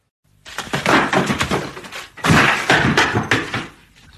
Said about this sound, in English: I'm fine. I only forgot to turn. But I crashed into that store cupboard and guess what? I found my bike, just gathering dust.